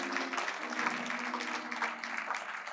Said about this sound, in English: Can we clap our hands and thank the Lord